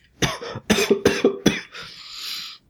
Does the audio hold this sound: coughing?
yes